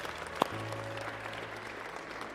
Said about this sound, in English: I want to give the Lord a hand clap. Amen.